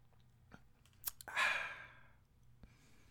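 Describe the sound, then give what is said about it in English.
A quiet sip from a drink: a few small mouth clicks, then a brief slurping draw that trails into a breathy exhale, with one last soft click afterward. “And before I get up out of here, y'all already know the boy get thirsty, so I gotta go ahead and take me a partake in a little sip.”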